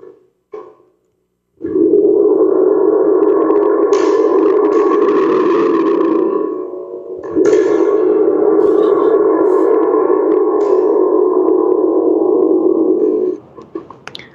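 A Remo spring drum, a percussion instrument, rumbles like thunder in two long, loud, reverberant swells with a metallic, echoing wash, briefly dipping between them before cutting off. No one speaks.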